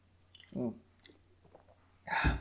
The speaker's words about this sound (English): So, well, you know what? I'm going to have a sip of beer because I'm getting a little tired of reading here.